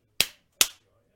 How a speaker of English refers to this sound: Do a clap again.